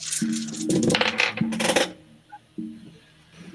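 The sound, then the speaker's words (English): A big handful of dice, rolled for a wits plus awareness check, clatters and rattles across a hard tabletop for about two seconds, fairly loud, then settles into quiet with a faint click or two. “That's a lot of dice.”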